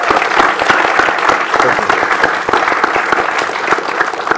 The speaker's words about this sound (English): You can't clap every time because we'll never get through it.